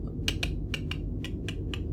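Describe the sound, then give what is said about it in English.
Soft clicks of saxophone keys being pressed, about eight in loose pairs at an uneven rhythm, fairly quiet, over a steady low rumbling background with no voices. “But she's just like clicking the, you know.”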